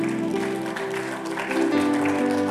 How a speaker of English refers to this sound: I thought you are clapping.